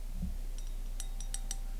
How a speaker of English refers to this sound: Tapping on the glass.